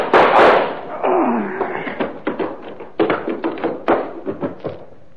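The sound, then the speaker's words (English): A loud burst of gunfire from a gun in a dark basement, followed by a rapid, irregular string of sharp, cracking shots that gradually thin out over a few seconds. “All I need is this gun. What gun? Yeah, the kind that goes bang, bang, like this.”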